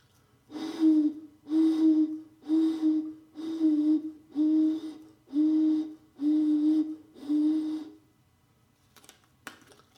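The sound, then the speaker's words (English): Eight breathy, hooting notes from blowing across the top of an 8-ounce plastic drinking water bottle, each a steady low tone about half a second long in an even rhythm, followed by a couple of faint taps. “First thing I'm going to do is going to blow across the top.”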